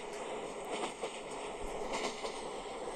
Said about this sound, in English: No, I'm just getting on the subway now.